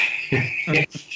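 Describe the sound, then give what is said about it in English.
A steady, high-pitched chirping of crickets runs continuously through the short clip, with brief bursts of a man's voice speaking over it. “Well, the magazine goes and crickets.”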